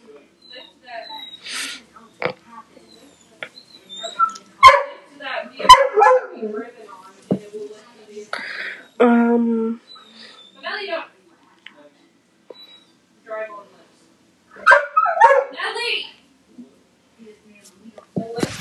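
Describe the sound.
A dog barks a few times in short, sharp bursts, scattered irregularly among people talking.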